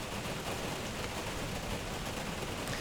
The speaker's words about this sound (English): And if I were to continue with my list, I would be raining on the parade, literally, which is what's happening right now. It's raining on the parade.